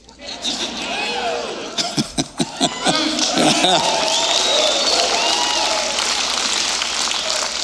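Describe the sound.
An audience cheers and shouts during a pastor's address over sustained, dense crowd noise, with a short burst of sharp clapping and whoops early on, then a steady loud roar of many voices.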